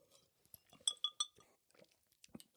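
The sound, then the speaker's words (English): Big ice balls knock and clink against a whiskey glass: three bright, ringing clinks in quick succession, with softer taps and sloshing before and after, no talking. “The ice just backsplashed and then splashed like into my eye.”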